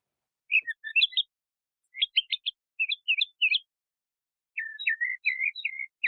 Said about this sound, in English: That sounded to me like a tentative bird. Right, yeah, and that tentativeness is a lack of stereotype.